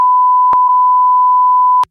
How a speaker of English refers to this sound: Yeah, I think they're going to want us to beep that out, too.